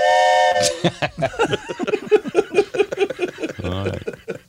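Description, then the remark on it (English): A loud, steady whistle of an oncoming train blasts briefly at the start, its chord-like tone cutting off after about half a second before people begin talking over the rest. “It's attached to a train. Yeah, it's sometimes. An oncoming train.”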